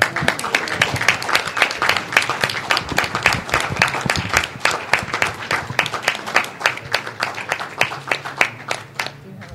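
An audience bursts into a full round of applause at a Florida Council of Citizens with Low Vision award presentation, dense and steady at first, then thinning toward the end into scattered, separate claps. There is no talking.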